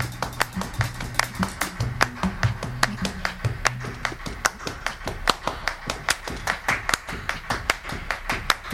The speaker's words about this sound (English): And this is happening here just naturally because there are five people clapping and their hands are making very similar pitches. So sometimes the waveforms are canceling one another out.